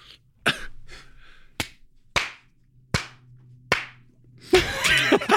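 Slow, isolated hand claps, as of one person clapping at the back of a large auditorium, ring out one at a time with a roomy echo, about five spaced irregularly, before a short louder flurry of clapping at the end. No one speaks.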